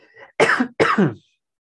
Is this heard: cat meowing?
no